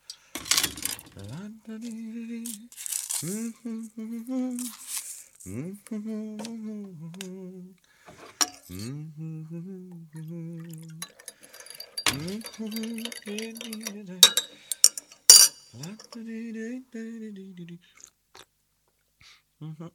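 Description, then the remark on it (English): Cups and spoons clink and tap sharply at irregular moments as a man alone makes tea, humming a low, wavering tune in short phrases; he takes a sip that breaks the hum, then picks it back up, the humming carrying steadily between the brighter kitchen clatter. “So he's making the tea and he's humming along, and it's nice because it's like a little snapshot.”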